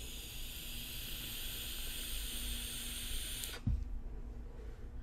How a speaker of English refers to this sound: 0.3 ohm coil head, 54 watts, 4.2 volts. Now, let's vape it.